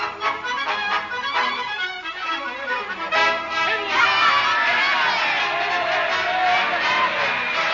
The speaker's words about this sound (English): Haven't you ever been to a political rally before? They'll yell at anything.